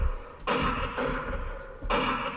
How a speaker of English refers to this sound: and there's little openings in the fort, and you can look out, and you just push the trigger, and this is what the guns sound like. Oh, we can shoot.